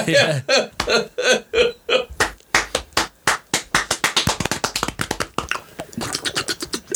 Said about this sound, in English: What a hero. Like, I love this guy. I want to give him a slow clap.